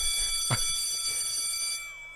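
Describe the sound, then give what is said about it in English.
A school bell rings in one continuous, shrill metallic stretch with a bright, buzzing tone, holding steady for about two seconds before cutting off. No one speaks over it. “Oh, school's out.”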